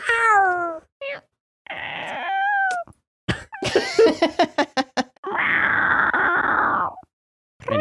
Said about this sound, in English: Meow.